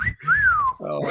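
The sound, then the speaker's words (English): A single clear wolf whistle: a short note, then a bright tone swooping up and gliding back down, followed by a voice starting to speak. “Hey, someone's wolf whistling me.”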